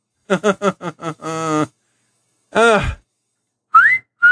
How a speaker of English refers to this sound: Do not whistle at her.